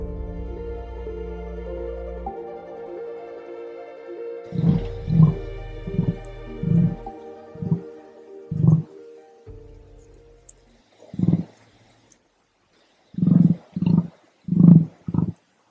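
An emu's booming call: a series of deep, resonant thumping pulses in uneven bursts, loud and low-pitched, the first ones overlapping a fading sustained hum, with no one speaking.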